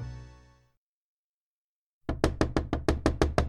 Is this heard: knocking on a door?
yes